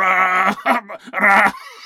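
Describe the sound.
A person imitates a goat with two loud, quavering bleats, the second longer and strained, each a wavering nasal cry with a brief gap between them.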